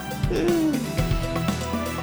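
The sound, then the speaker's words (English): A person mimics an owl's hoot with a drawn-out, wavering vocal call, followed by a few lower murmured sounds. It is moderately loud, with no real words spoken. “The kick connects with his teeth, his head snaps around backwards, and he topples. Backwards? Like so, an owl.”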